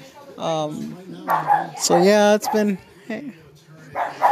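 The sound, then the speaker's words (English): Dogs bark and yip in several short, loud bursts, seemingly because visitors have arrived, with a few brief pauses between them while a person talks underneath. “I'm sorry, my dogs are barking because I think we have company.”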